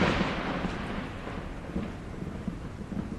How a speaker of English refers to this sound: Did you guys hear that crackle of thunder?